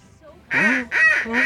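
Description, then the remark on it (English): A real duck, not a duck whistle, quacks three times in quick succession, loud, each call a harsh nasal honk with almost no gap between them after a brief quiet start. “No, that's a real duck.”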